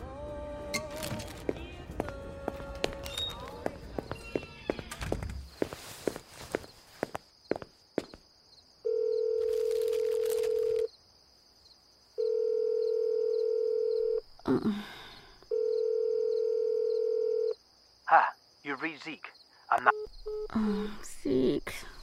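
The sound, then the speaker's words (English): Footsteps and clattering give way to three long, steady ringback tones on an outgoing phone call, evenly spaced with short pauses between, followed by brief rustling sounds. “please answer your phone.”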